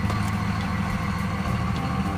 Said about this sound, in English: Loud ass diesel truck